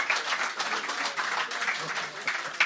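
A short round of applause from a small group for a correct quiz answer, a dense, steady patter of many hands clapping at moderate loudness throughout, with no pauses.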